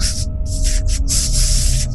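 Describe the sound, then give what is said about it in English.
A loud, continuous, ominous hissing crackle of the air, with bursts of bright static surging and briefly dropping out over a low, steady rumble and faint hum. “But as everybody gets closer, you start hearing that crackle.”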